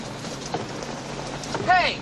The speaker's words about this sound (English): Hey, it's not raining outside. It's just in here.